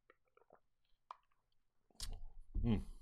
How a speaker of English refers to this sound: I'm just going to take a sip of water. Excuse me.